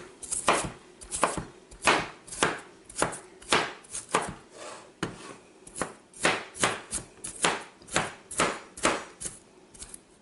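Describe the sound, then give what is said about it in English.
A knife chops canned water chestnuts for a dip on a cutting board in a steady run of crisp, sharp thwacks, about two per second, with no one talking. “Just chop them up.”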